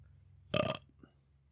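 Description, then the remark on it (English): A single short, throaty burp erupts after drinking a car bomb drink, loud and brief, over a faint low hum with quiet background otherwise. “Oh, I wanted a bigger belch than that. Okay, there we go. I got the burp in there.”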